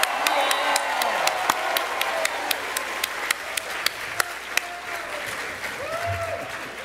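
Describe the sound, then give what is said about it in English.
An audience applauds steadily as Phil Lamar, voice of the Earth King, is brought to the stage; a dense wash of clapping with a few sharper individual claps standing out, and faint cheers or voices mixed underneath. “Give it up one time for Phil Lamar.”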